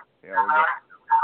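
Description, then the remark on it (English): A thin, band-limited voice comes through a phone line, with a short burst of sound repeating after a gap as if the line is echoing it back. “an echo chamber going on.”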